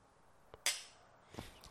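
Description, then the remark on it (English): Tall champagne glasses clink together once in a short, dull tap with only a brief high ring that fades quickly, framed by a couple of softer knocks in an otherwise quiet moment. “Very unsatisfying clink, though.”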